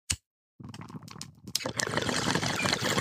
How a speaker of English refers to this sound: We got double bongs. We got a bong waterfall.